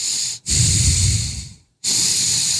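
Heavy breathing right into the microphone: a loud, rushing exhale, a short pause, then another breath starting, airy and hissing with no talking.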